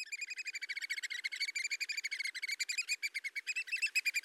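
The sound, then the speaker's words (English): Two American oystercatchers on Long Island give a rapid, continuous series of shrill, piping whistles, the high calls repeating in a fast, slightly uneven rhythm with no voices present. “We step off the boardwalk and immediately see two American oyster catchers.”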